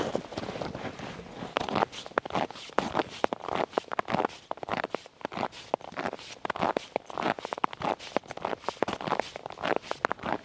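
Small crampons on big extreme cold weather boots crunch steadily through a camp on sea ice, each step a sharp, gritty scrunch in a brisk walking rhythm that keeps going throughout, with no voices over it.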